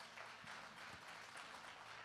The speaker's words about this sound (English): Let's give him a round of applause for all that he's done.